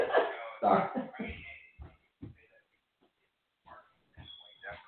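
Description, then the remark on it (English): A couple of loud, harsh bursts of a sneeze come at the start, followed by softer breathy snorts and a few faint sounds before it trails off. “Sorry. God bless you, Blog Talk.”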